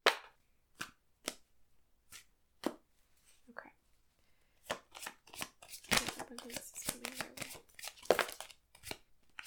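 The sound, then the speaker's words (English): A deck of tarot cards being shuffled during a tarot reading: a few sharp, separated slaps at first, then a dense flurry of riffling and flicking, fairly loud. “Okay, I'm just gonna finish shuffling this before I tell you.”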